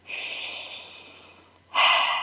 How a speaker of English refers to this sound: So I invite you to lean in, keep doing that deep breathing.